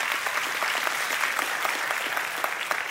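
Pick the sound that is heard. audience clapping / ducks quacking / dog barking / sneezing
audience clapping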